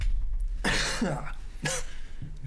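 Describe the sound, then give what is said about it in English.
Two harsh coughs a second apart, the first longer and rougher, followed by a faint throaty sound, over a low steady background hum with no talking. “I just got a cough.”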